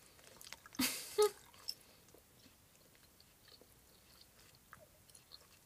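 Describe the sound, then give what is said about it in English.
Wet chewing and biting sounds, with a sharp crunchy burst near the start followed by softer, irregular mouth noises and smacking. No one speaks. “Sorry if you're hearing chewing noises right now.”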